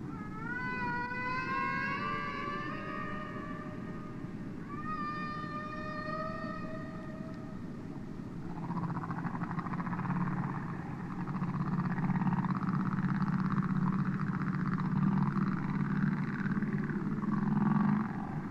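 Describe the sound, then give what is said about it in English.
Humpback whale song recorded underwater: a series of rising, harmonic whooping cries, followed by long, low groaning moans over a steady hiss of ocean noise. No talking. “Much underwater sound is in fact very beautiful, and nothing illustrates this better than the singing of the humpback whale.”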